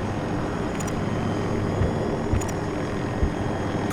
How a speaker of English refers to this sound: Oh, there's a helicopter up high. That's why we're going low.